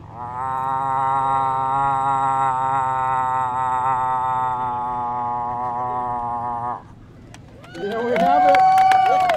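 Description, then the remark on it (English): A first-time competitor at a moose-calling contest imitates a moose call with a long, buzzy, nasal drone held at a steady low pitch for about seven seconds. After a brief pause come a few louder, wavering vocal calls that bend in pitch. “First time moose caller?”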